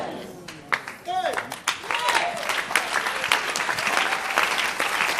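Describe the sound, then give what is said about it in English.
An audience bursts into applause during a sermon, scattered claps at first swelling into steady, loud, dense clapping with a few voices calling out over it. “If I'm preaching this in another country, they will clap better.”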